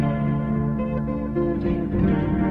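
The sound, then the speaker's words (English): A soft rock Christian ballad by a singer-songwriter, drenched in heavy reverb, with sustained, washy chords ringing out at a steady, moderate volume and a dreamy, echoing feel. “Starting as a singer-songwriter who turned the inhibitions all the way down and the reverb all the way up, here's his ballad,”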